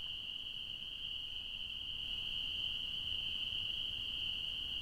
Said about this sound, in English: Listen to those frogs.